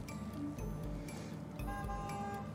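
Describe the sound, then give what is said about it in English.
Two car horn honks, one after the other, the second longer and with a brighter tone, heard over a steady background noise with no one talking. “We got a honk. Honk? Two honks.”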